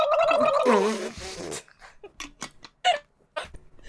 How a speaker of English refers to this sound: Do you want to hear me gargle the water?